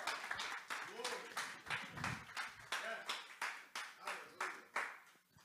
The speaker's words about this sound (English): And if you believe that, I want you to give God a mighty hand clap of praise.